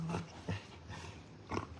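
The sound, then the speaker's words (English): A small female dog, Booby, makes short, low grunting snorts in a few quick bursts while play-fighting and trying to dominate another dog, Lulu, with a steady background hum and no talking. “So it's very funny when she is trying to dominate Lulu.”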